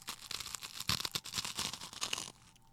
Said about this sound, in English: Okay, we're eating garlic bread, so you might hear some crunch. Please do not spill the crumbs on the floor.